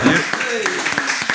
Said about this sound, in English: Spirited round of applause.